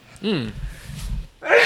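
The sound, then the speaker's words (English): A single sneeze: a brief voiced intake of breath, a short pause, then a sharp, noisy burst at the end. “Bless you.”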